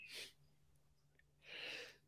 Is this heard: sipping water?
no